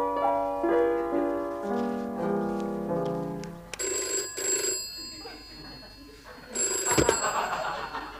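A short stepping melody of tones gives way to a telephone bell ringing loudly in two bright, rattling bursts separated by a brief pause.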